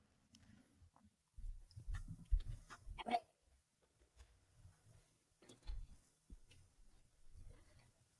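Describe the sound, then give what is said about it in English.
A dog barks in muffled, irregular bursts, a cluster early on and another later, low in level with no talking over it. “Bloody dog.”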